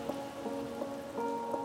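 Steady rain from clouds come over the Pennines, pattering on steep streets and wet cobbles, a continuous hiss with soft irregular taps, accompanied by a sustained low tonal hum running underneath throughout.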